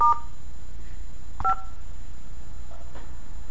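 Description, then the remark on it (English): A few touch-tone keypad beeps on a phone during a call, each a short dual-pitched tone, with a wrong key pressed by mistake, pressed irregularly over a faint steady line hum, with clicks between presses and no talking. “Hit the wrong key.”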